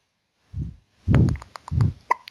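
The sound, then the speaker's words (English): A baby girl hiccups three times in a steady rhythm, each one a soft, low thump with a faint click, separated by brief pauses of quiet. No one speaks. “Oh, she has the hiccups.”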